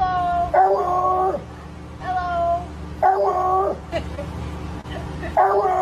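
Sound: dog vocalizing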